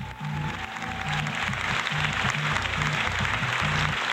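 An audience claps in a dense, steady wash of applause that lasts the whole few seconds, with a repeating low, rhythmic musical pattern running underneath.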